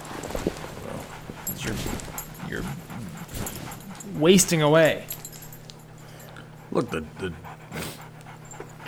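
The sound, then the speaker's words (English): A dog sitting patiently at a person's feet pants and lets out a rising, wavering whimper, with a couple of shorter whines afterward, while people talk quietly over a low steady hum. “look at the dog just patiently sitting at your feet.”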